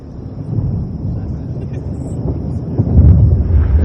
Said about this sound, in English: We begin to hear the sound of thunder before the cut.